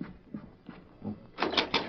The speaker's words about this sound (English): Perhaps that is... I will open the door.